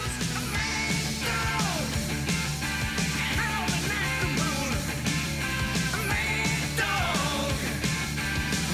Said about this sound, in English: Oh, I love that scream there. That's the first time he's done that in a while. I love that going out of that that last verse.